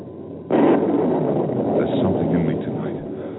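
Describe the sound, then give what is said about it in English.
A loud, low rumble of thunder from an approaching storm rolls in suddenly and holds steady as a broad, grumbling roar, easing slightly toward the end. “Is the thunder really thy voice?”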